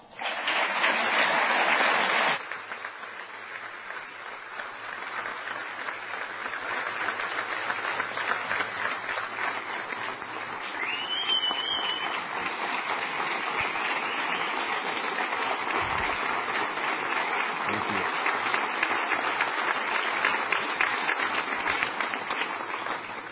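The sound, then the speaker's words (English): A crowd claps steadily for over twenty seconds as the police chief is welcomed to the podium, a dense crackling wash of applause that swells loud at the start, with scattered whoops and cheers rising above it. “Nice of my mom to lead that cheer.”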